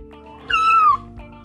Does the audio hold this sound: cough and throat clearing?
no